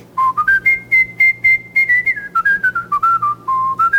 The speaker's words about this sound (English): So I whistled … by ….